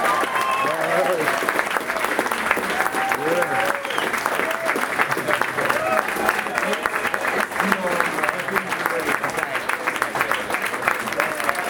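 A crowd applauds a poet after a poetry performance, dense clapping mixed with cheers and whoops rising over the noise, sustained at an even loud level for around twelve seconds.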